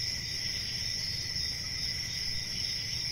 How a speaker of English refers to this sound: Crickets. That's not a good response.